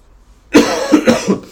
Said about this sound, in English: I have to excuse our coughing as well. Both of us are slightly ill.